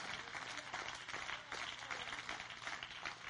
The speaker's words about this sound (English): Oh, everybody clap your hands to the Lord.